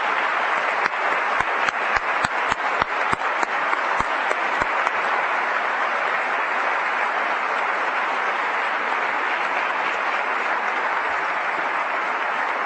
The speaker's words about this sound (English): And now for your applause.